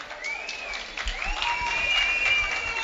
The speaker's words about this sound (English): One of the greatest goalkeepers ever. Ever in the history of this country. Playing for Orlando Pirates, Patson, Gambles, Sparks, Banda. Give him a big round of applause, ladies and gentlemen.